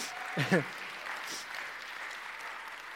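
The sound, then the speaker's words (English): People at Coastline church's birthday celebration clap steadily for a few seconds, a soft, even patter of many hands, with a brief voice fragment near the start. “I was just pausing for breath, not for applause.”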